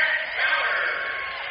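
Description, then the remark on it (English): Basketball fans at a St. John's game against Fowlerville applaud and cheer as St. John seniors check in, a steady, dense roar that stays fairly loud through the short moment, swelling slightly midway before easing a little. “Nice to see St. John seniors checking into a round of applause from all the fans here tonight.”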